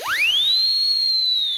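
A single loud, shrill whistle blast, blown as loud as possible with reverb added, swoops up into a sustained high piercing tone and holds for over a second, ringing with a reverberant echo. No one speaks.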